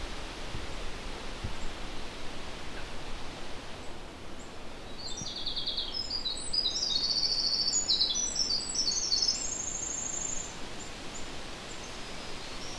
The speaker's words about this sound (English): There's some black-throated green warblers here as well.